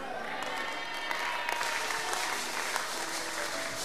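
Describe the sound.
A church audience claps steadily throughout, a dense wash of many hands applauding at once, fairly loud, with some voices murmuring faintly underneath.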